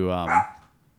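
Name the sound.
dog barking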